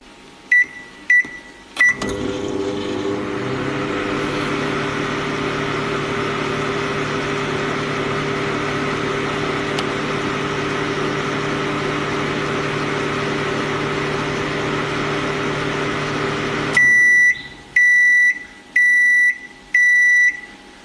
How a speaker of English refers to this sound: The sound of a microwave being started, being used, and finishing.